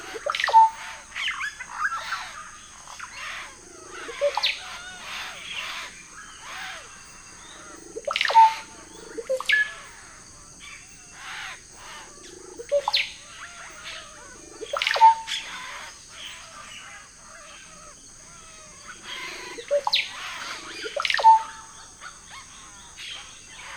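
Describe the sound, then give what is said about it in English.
Russet-backed oropendolas sing and call loudly at a lodge, repeating liquid, gurgling bursts every few seconds over a steady high insect drone, with no one talking. “How can one nap when oropendulas are singing and calling so loudly?”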